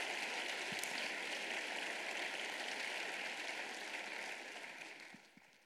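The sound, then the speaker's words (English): An audience claps in a steady, dense round of applause for the people who prepared the food, holding evenly for several seconds, then tapering off and fading out near the end. No one speaks. “Why don't we give them a round of applause before?”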